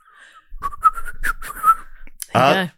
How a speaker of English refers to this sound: Yeah, it's mainly in. Mm-hmm. It's like in guitar, it's like up-picking. Yeah. It's the same for whistling. In-sucking. As opposed to out-sucking. Yeah. Whistling is all about suck and blow.